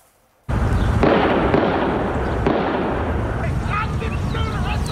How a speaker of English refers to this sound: So this is eyewitness video that you're looking at of police rushing to the scene as gunfire was ringing out there.